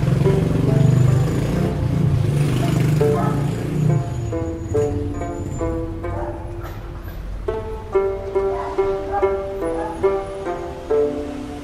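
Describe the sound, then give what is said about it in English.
A bus engine rumbles low as the bus slows and pulls into an empty no man's land at Thebes, the drone easing off after a few seconds while indistinct voices talk over the idling motor. “The bus pulls into a no man's land.”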